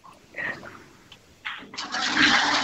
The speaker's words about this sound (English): Okay, Adele, give the toilet a flush for us.